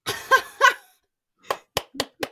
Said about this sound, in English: This is a clap from me.